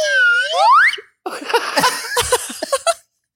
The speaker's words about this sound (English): You have a slide whistle. Why do you have a slide whistle?